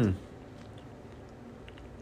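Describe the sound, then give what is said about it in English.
A dog chews pepperoni with soft, faint wet smacking and small clicks over quiet background noise, following a brief voiced sound at the very start. “Pepperoni. Chew it up. You don't like pepperoni? Eat it now.”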